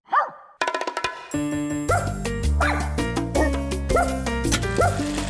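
A dog barks once on its own, then sharp barks recur at a steady beat, roughly once a second, woven into a bright, loud musical backing that builds underneath.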